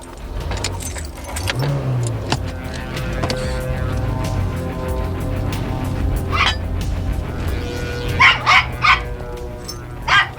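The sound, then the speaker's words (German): A steady low car engine rumble runs throughout as the vehicle rolls away from a rest area, and toward the end a dachshund at a woman's feet lets out a quick series of sharp, fairly loud barks. “Zu ihren Füßen der Dackel.”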